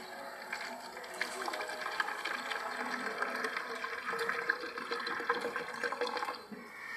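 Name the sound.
water pouring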